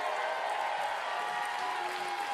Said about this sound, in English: Come on, give Jesus a great big hand clap.